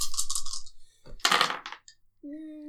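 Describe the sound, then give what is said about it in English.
Small hard dice clatter and rattle across a table in two quick bursts during a tabletop role-playing game, fairly loud, followed by a brief low hum from a voice. “I'll do these first, and then the stress dice.”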